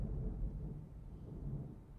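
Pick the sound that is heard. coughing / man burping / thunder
thunder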